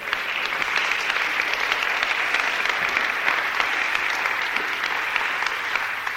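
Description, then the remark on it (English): A crowd of people applauds steadily for a woman about to give a testimony, a dense wash of many hands clapping at once that holds at an even level for several seconds without pause. “Give her a clap.”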